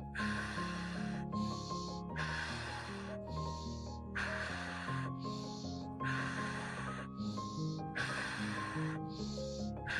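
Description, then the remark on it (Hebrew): Steady, rhythmic, slow deep breathing, in through the nose and out through the nose, each breath an airy rush repeating roughly every second, part of 20 paced breaths, with soft sustained music playing underneath. “ונשימות איטיות, 20 נשימות לפי הקצב, נשימות עמוקות, להכניס מאף, להוציא מאף. לשים לב לנשימה, לבטן השטוחה, לתחושה של הגוף, כל נשימה ונשימה.”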